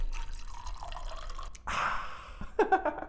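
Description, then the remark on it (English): Liquid is poured into a glass: a dribbling trickle, then a brief fuller gush, and a few bright splashy clinks as the pour finishes. No one speaks. “pour me another one.”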